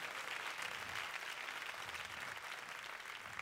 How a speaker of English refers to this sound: Oh, I'm gonna make you clap for that. I'm gonna make you clap for that.